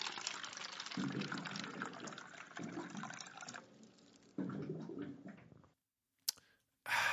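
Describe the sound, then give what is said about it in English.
Water pours from a cooler spout in steady bursts, with low glugging gurgles as air bubbles up through the jug, then a sharp click and a brief final splash. No one speaks. “Well, you know what that sound means. It's time for your water cooler facts.”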